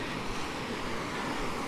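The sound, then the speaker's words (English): Steady, broad rushing of surf washing onto Meadowfoot Beach at the mouth of the River Irm, a continuous hiss with no distinct wave breaks, heard at a moderate level with a hint of wind and no voices. “I've reached Meadowfoot Beach at the mouth of the River Irm.”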